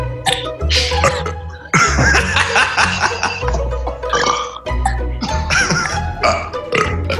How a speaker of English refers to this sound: It descended into a burping competition.